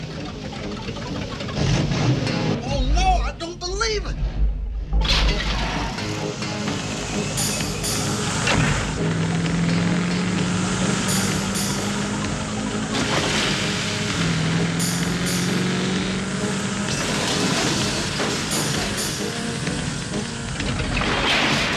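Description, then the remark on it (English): A small lawn tractor engine, ridden early in the morning, drones steadily for the whole stretch, its low hum slowly rising in pitch, while a voice exclaims briefly near the start. “He's on a lawn tractor.”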